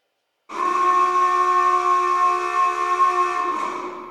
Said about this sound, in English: The terrible alarm sounds again.